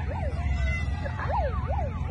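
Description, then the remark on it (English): A police siren as police pull up, wailing with rapid rising-and-falling sweeps, loud, over a low rumble of traffic and engine noise. “Then you hear the cops pull up.”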